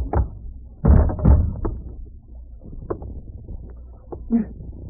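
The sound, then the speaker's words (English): A heavy blow lands with a dull thud, quickly followed by a second impact, then softer bumps and shuffling as a man is knocked out and his body falls. There is no speech. “I didn't want to knock you out, much less tie you up.”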